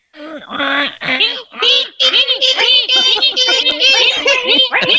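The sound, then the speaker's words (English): Several voices together imitate the shrieking violin stabs of a horror-movie shower scene, a loud run of repeated, high-pitched screeching cries that overlap and continue for about five seconds. “Now everybody, let's end the show by doing the shower sound, okay?”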